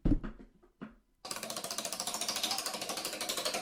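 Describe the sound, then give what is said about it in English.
A spinning prize wheel clatters through a fast, steady stream of loud, crisp clicks. The ticking starts abruptly after a few brief rustling sounds and runs on without stopping. “I'd like you to go over there and give the thing a spin and see what we have, because whatever it lands on, that's what we're going to do next.”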